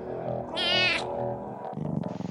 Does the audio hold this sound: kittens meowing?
yes